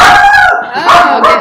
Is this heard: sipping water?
no